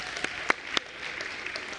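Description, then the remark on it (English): Brief, light applause: a few sharp, bright claps stand out early, then a softer scattered patter of hands continues at a fairly low level, with no voices. “Oh, I'm going to give you a big applause right there.”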